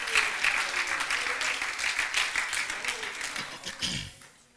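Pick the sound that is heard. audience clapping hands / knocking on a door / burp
audience clapping hands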